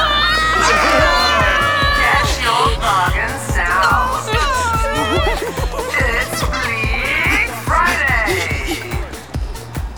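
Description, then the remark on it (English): A crowd of shoppers rushes in and pushes for boxed products as a Bleak Friday sale launches, amid a loud, chaotic clamor of many overlapping voices, with shouts, shrieks and squeals piling on top of each other throughout. “Preen is wildly pushing into the crowd.”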